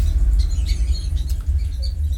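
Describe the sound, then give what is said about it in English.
Many small creatures, more than five, chitter and chirp in quick, scattered high squeaks over a steady, heavy low rumble, with a faint airy hiss coming from a crack running underneath. No one speaks. “Chittering. I said there was at least. And chirping. I can only give you a minimum. And hissing comes from the crack.”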